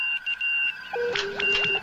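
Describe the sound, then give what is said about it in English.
Steady electronic beeping tones, a high whine broken into on-off pulses with a lower tone entering midway, the old Morse code call signal picked up from an unidentified space vessel, over a faint hiss. “Captain, that's the old Morse code call signal.”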